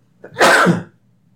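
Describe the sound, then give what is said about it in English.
A single loud sneeze, with a short breathy intake leading into a sharp, noisy burst that quickly fades to quiet. “I'm going to leave that in. Okay. God bless you.”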